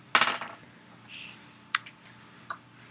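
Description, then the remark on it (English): A wild die is rolled again onto a hard table with a sharp burst of rattling, followed by a few fainter clicks and taps as it tumbles and settles, with no talking. “All right, so roll it again.”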